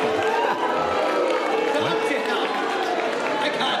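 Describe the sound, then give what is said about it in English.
A large audience boos loudly and steadily, a thick wall of low, drawn-out voices that holds without a break for the whole few seconds, in reaction to the line 'I miss Obama'. “That are just booing, would you say?”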